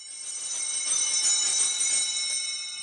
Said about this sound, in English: I love serving mass, and I love ringing the bell, and I love getting the altar and wine and giving it to the priest, and I really, really, I loved every minute of it.